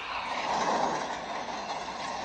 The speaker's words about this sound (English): I think that's a train. Railroad?